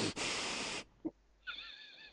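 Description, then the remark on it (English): A voice imitates heavy breathing through the nose: one long, loud, rushing exhale, a short pause, then a thinner, wheezy, whistling inhale, with no talking. “Do you know what does give me a bit of the ick is, like, really heavy breathing through your nose.”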